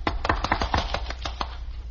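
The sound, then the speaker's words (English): A short round of applause for a fourth-grade competition winner before she reads her poem: a few people clapping in quick, uneven bursts of sharp slaps, fairly steady in loudness for about two seconds, with no voices. “Has to get her applause before she reads the poem.”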